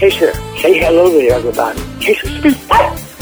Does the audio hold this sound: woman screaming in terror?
no